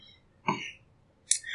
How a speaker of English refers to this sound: And I'm going to burp in the microphone. Nice.